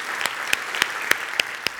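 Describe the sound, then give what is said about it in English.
Congregation applause at a Passion Life Church service, a round of applause for the Lord: a dense, steady wash of many hands clapping, with sharper individual claps popping out at a regular, quick rhythm. No one speaks over it. “Can we give the Lord the best round of applause that we've given him all day?”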